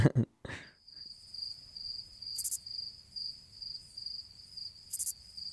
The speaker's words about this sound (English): But for now, just enjoy the soothing sound of these crickets.